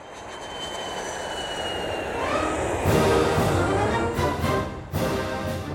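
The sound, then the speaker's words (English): A jet airplane, Air Force Two, rumbles and whines steadily as it taxis along a runway in brisk Ohio air, its engine pitch rising partway through, loud with no voices. “Noxious gas tainted the brisk Ohio air as the plane taxied down the runway.”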